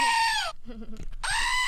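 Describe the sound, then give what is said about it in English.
A screaming goat toy mounted on a little box lets out two loud, harsh screaming bleats, separated by a brief gap with a faint low sound in between. “ASMR Screaming Goat.”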